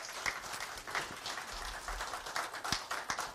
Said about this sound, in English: You guys, give her a round of applause.